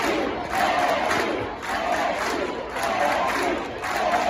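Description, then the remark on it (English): A huge stadium crowd roars and cheers at a grand slam in a dense, sustained wall of voices, with the noise swelling in repeated surges as the excitement builds. “I mean, the reaction to that.”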